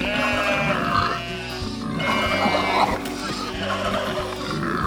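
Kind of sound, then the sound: animal, pigs grunting and oinking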